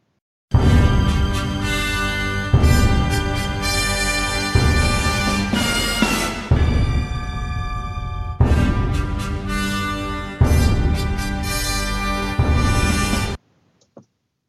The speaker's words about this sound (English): Theme tune? What, now? No, now.